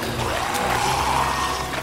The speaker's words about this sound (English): Oh no! The stream is picking up!